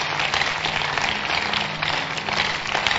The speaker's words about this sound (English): Can I have a big hand clap for Jesus?